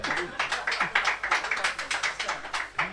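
Someone applauding with a fast, steady run of sharp claps that continues without pause for a few seconds, with faint voices murmuring underneath.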